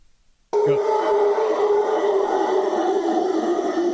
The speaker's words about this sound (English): All right, bring me up so we can hear what a howler monkey sounds like. Oh, this is going to be really terrible, isn't it? Probably.